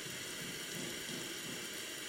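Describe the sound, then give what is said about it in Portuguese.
Flowing water makes a soft, steady rushing hiss that stays even and unbroken throughout, with no voices or other sounds. “Ouça a água.”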